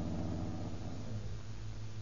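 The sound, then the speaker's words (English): A car engine idles with a steady, low rumbling hum as the car pulls in, constant in level for a couple of seconds, with no voices over it. “Here's a good place to pull in.”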